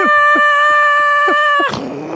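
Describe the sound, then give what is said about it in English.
During a timed word-guessing game, a voice imitates a roller coaster with a long, steady, high-pitched wail, held loudly for over a second before swooping down and trailing off. “Roller coaster! Roller coaster! Yeah.”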